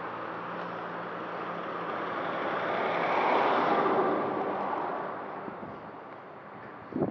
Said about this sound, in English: Oh, we got a big truck coming here. Let me move out of the way.